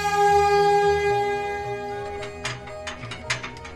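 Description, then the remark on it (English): The Bessie Freighter, a freight train, rolls along the northern train track, a steady droning tone fading into irregular metallic clanks and rattles of wheels over rails, with no voices. “And appearing out of that rust is the Bessie Freighter on the northern train track.”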